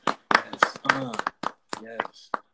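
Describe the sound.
A few sharp, evenly spaced hand claps ring out in a quick rhythm to congratulate Tyler Perry, overlapping a voice that keeps talking or cheering throughout.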